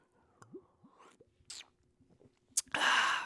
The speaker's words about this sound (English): Sipping that brewski, sipping that winter lager, homies.